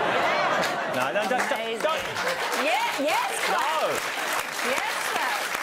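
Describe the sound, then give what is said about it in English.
A crowd on a show applauds steadily and fairly loudly throughout, with scattered whoops and laughing voices rising over the dense clapping. “We do not applaud puns on this show.”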